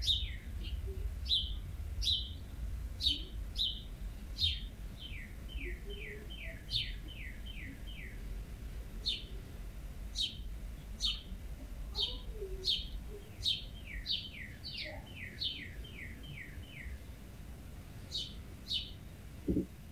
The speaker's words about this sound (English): As a final cool fact, the females of cardinals sing, and they sing from the nest to tell the male that she's hungry.